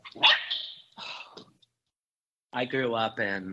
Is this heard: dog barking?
yes